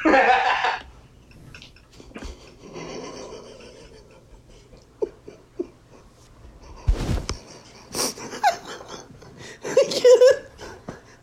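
Breathy puffs of a person smoking: a long drawn inhale, then several shorter exhales and sharp draws spaced across the stretch, with small clicks and a soft snort-like laugh between them.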